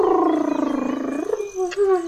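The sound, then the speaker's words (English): A human voice imitates a gentle lion roar, a soft drawn-out growling tone that slides lower and then lifts slightly, lasting about two seconds, fairly loud with no other sounds. “But, I will aggravate my voice so that I will roar you as gently as any sucking dove.”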